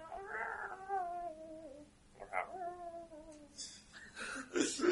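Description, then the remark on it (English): A voice imitates the cat Kivala mewling piteously: two long, drawn-out, wavering mews with a short gap between them, followed by brief, squeakier whimpering sounds, fairly quiet. “So Kivala is mewling piteously, trying to.”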